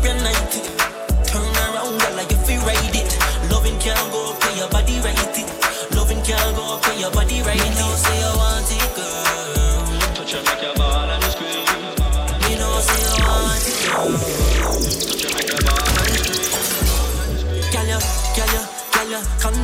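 A loud song plays continuously with a heavy pulsing bass, punchy steady drum hits and dense layered synths, with sweeping rising and falling effects midway through.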